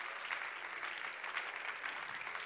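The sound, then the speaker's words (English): A church audience claps steadily to the Lord for a few seconds, a dense, even wash of many hands at moderate loudness with no pauses and no voices. “Can we keep that hand clap going to the Lord?”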